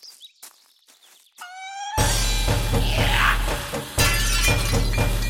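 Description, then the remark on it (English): A few faint clinks and a brief ringing tone, then loud breaking crockery: a girl in a kitchen smashing dishes one at a time, successive crashes of shattering dishes, with debris clattering in between, and no voices. “In a most baffling turn, we found her in the kitchen, smashing dishes, one at a time, and when a sliver or shard found its way into her flesh, she did not react.”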